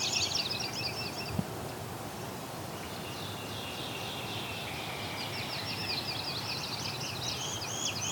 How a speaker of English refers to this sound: The goldfinch here too, and northern cardinal trying to compete.